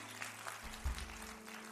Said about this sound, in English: Well, let's give everybody a real round of applause, amen.